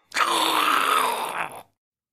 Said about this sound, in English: You actually hear that same howl. You hear that horrible, monstrous howl.